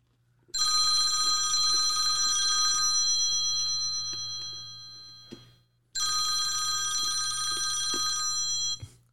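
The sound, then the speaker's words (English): An old-style telephone bell rings twice on a call to Mark Harlan, University of Utah athletic director. Each burst is a loud, sustained metallic trill lasting a few seconds with a short pause between, heard alone. “Let's see how that phone call went.”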